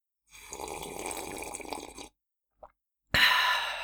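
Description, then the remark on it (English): A long, wet, gurgling slurp of tea runs for about two seconds, then a short silence with one faint click, then a second sharp, breathy slurp begins. No one speaks. “What about when you drink your cup of tea like this?”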